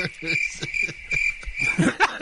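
A steady cricket chirp sound effect rings throughout, a continuous high trill, while people laugh and murmur underneath in short bursts, the laughter swelling near the end.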